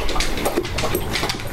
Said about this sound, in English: It's my dog is drinking water.